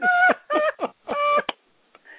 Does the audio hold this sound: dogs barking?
no